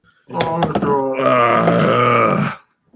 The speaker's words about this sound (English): Oh, God. Dude, those burps are going to make me throw up.